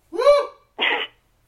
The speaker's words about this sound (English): Bless you, sir.